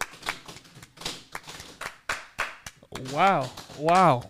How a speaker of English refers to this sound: Round of applause for the people in the studio.